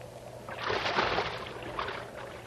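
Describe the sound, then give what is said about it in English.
A person drops about 12 feet into water with one loud, broad splash that surges quickly, then churns and fades over about a second and a half. No one speaks. “Come on in. The water's fine. It's about a 12-foot fall.”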